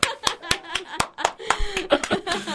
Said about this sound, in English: Did you like my clapping? I loved your clapping.